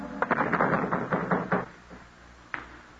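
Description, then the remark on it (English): A rapid series of firm knocks on the door of a dance hall in Tampa, roughly eight in quick succession, followed by a short pause and one last single knock. Nobody speaks. “They won't open up for us.”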